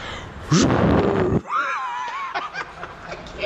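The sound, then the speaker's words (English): A voice imitates a jet taking off with a loud, rising whooshing roar lasting about a second, cut off abruptly and followed by a high, wavering whistle and scattered laughter, in a parking garage. “You know how a jet sound?”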